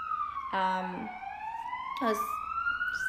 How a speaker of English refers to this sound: Ambulance?